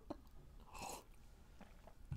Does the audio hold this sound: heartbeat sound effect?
no